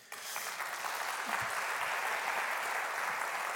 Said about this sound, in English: You can clap for yourselves. That's totally cool. Clap for yourselves.